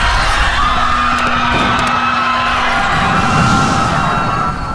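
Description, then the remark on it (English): Loud, continuous shrieking and screaming from several passengers at once as an elevator starts down its shaft, a dense wall of high-pitched cries that stays intense throughout, with a brief thump partway through. “There was shrieking and screaming.”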